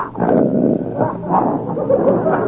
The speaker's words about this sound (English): That's the biggest dog I ever seen.